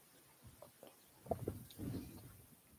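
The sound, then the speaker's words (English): Soft mouth sounds of someone pausing during a talk to sip water, with a few small slurps and gulps followed by a brief swallow, and no talking. “One more sip.”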